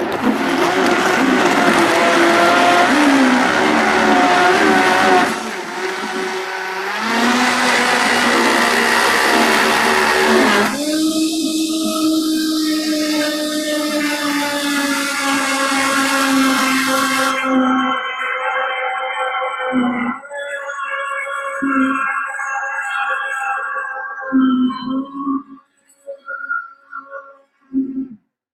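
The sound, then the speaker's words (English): A blender roars loudly and continuously, with its plunger in use, its motor pitch shifting up and down as ice, bananas and thick liquid churn into a green shake, with brief surges and stutters before sputtering to a stop near the end. “And I am gonna need the plunger for this one, so let's give it a whirl and see where it goes.”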